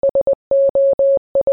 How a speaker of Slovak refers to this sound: Ale hej, Telegram nepošlete, ale keď sa naučíte pár slov v morzovke, určite vám to môže aj dakedy zachrániť život. Napríklad také SOS by bolo fajn.